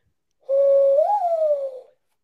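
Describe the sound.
A person imitates a mourning dove with one sustained, hollow, low coo lasting about a second and a half. The pitch lifts briefly in the middle, then slides gently down as it fades.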